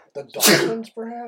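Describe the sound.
A single loud, sharp sneeze bursts out, sandwiched between brief bits of a man's talk just before and right after it.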